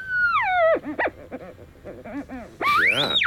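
A theremin-like electronic tone swoops downward, wobbles through a string of short warbling notes, then slides sharply up to a high, loud whine at the end. No one speaks.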